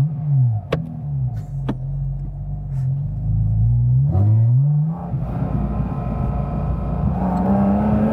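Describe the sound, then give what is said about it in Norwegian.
A car engine revs up and down repeatedly, its pitch sweeping low and rising again, loud, with a steady rumbling idle between the revs and no voices. “Får vel ikke rusa de bilene her? Jo, da litt kan du gjøre.”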